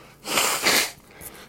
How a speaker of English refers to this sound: It was interesting on, let me blow my nose. I apologize again for the humanity here.